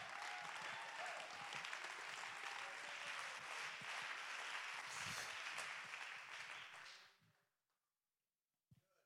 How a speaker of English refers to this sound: Oh, clap your hands and give God the praise.